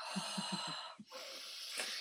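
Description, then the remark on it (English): Heavy, raspy breathing: a long hissing inhale and exhale with low snorting pulses, a voice imitating Darth Vader's respirator breathing. “I think you're breathing kind of heavy.”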